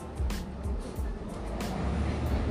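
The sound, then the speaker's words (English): A loud truck rumbles past outside, its deep, steady engine drone filling the background with a few sharp hissing bursts on top. “there's a super loud car. I guess it's a truck.”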